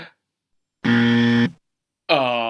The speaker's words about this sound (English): So I think we're going to put in a klaxon or a buzzer.